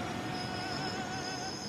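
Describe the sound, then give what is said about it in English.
A late train pulls into a station platform in Saarbrücken, Germany, its steady rumble overlaid with sustained, high metallic wheel and brake squeals. The sound is continuous, with no voices. “On the platform, Basil waits for a train that's late, but eventually pulls in.”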